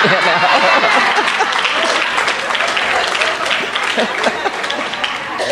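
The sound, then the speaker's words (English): Sustained applause from an audience, a dense, steady wash of many hands clapping for several seconds at a loud, even level, with some voices mixed in beneath it. “I have done throughout the years, especially the last few years, when I hear that applause and it's all nice, what I always end up saying is, wow, you know what?”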